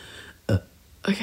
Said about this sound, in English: Oh, sorry, I burped.